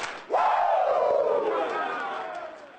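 A crowd lets out a loud, sustained Ric Flair "woooo" together, bursting in abruptly after a sharp hit and gliding slowly downward in pitch as it fades over a couple of seconds.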